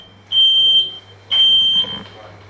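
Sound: smoke alarm beeping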